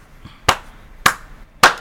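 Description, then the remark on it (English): Three sharp, loud hand claps land at a slow, steady pace, each a crisp slap with a short decay, and nothing else but faint background between them. “Real quick, let me give you a clap, sir.”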